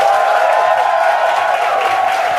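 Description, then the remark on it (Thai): An audience claps together in a steady, dense burst of applause that stays loud and even for a couple of seconds, with a faint murmur of crowd noise underneath, after a speaker asks those who want a masterpiece of their life to clap. “เราพิชิตใจตัวเองได้เราได้มาสเตอร์พีซของชีวิตเราครับโอเคป่ะใครอยากเนื้อมาพีซปรบมือแบบเป็นแบงค์ออน”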